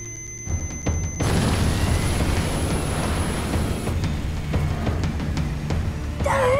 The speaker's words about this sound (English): The engine's on fire! The whole of the wing was a sheet of light.